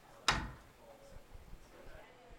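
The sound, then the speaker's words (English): A door shuts with one sharp clunk right at the start as a person leaves the room, followed by quiet with faint low rumbling and scattered soft noises. “Then it would work if you went outside the door.”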